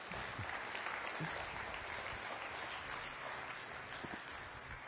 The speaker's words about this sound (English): we believe Jesus still does the same today. In fact, that's why we're here, and that's worth clapping your hands about, don't you think?